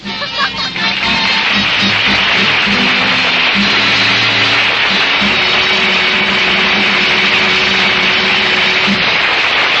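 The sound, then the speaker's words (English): An outboard motor engine runs loudly and steadily, a continuous buzzing drone with a low humming tone underneath that never stops. “You can take along your outboard motor, too.”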